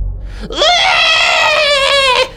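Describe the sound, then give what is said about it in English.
A baby monster with a tail, little wings and pointed teeth, at an altar, gives a loud, piercing shriek as someone approaches; it rises sharply and holds for about two seconds, harsh and wavering with a rough, tremulous edge before cutting off abruptly. No voices accompany it. “It does have the tail and little wings, and its teeth as it sees you come down to it, you see like pointed teeth, and it starts shrieking as you get closer and closer to it.”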